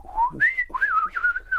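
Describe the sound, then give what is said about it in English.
A whistled imitation of robot beeps voicing a droid character: a rising glide jumps to a high held tone, then wavering, warbling chirps follow for under two seconds, clear with no talking. “just her going beep, beep. Swirly noise.”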